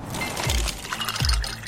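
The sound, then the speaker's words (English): A brand-new ice maker drops ice cubes into a fresh glass of water: two distinct plunks with a watery splash, and a light liquid fizz running underneath, with no voices. “Those are the sounds of a brand new ice maker dropping cubes into a fresh glass of water,”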